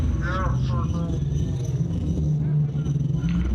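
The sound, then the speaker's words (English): A car engine roars loudly and steadily at high revs as the car drives at over 320 with the accelerator pedal pressed all the way down, a dense low rumble filling the whole stretch, with a voice briefly audible near the start. “My foot's all the way down on the pedal.”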